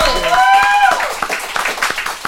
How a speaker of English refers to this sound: Everybody, clap it up, please.